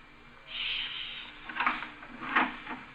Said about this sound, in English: Well, we'll open the door carefully and peek in. Now be quiet in case he's still asleep.